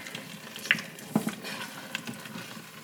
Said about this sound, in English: Just looks very, very pretty. And it's bubbling away now. It gets a little bit difficult to stir, so you have to put your back into it a little bit here, food nerds